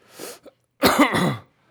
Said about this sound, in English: Because... My God, I'm coughing so hard.